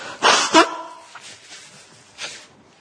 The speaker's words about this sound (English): sorry for those of you on the tape who just had to endure me blowing my nose, and it's that or dribbling on the notes, which is not a good spectacle for the congregation.